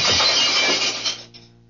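A pane of glass is smashed with the butt of a gun: a sharp blow, a loud bright crash of shards that scatters and fades over about a second, ending with a last small tinkle.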